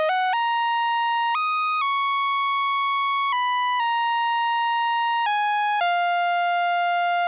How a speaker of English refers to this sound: Most noticeable is a lead synthesizer, which plays a line that glides or skates over the surface of the track.